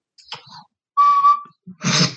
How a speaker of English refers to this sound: It's an Irish tin whistle.